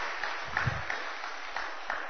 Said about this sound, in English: In December, they unanimously voted to pursue 100% clean electricity by 2030, which is a really encouraging sign. Yeah, that's worthy of a little clap.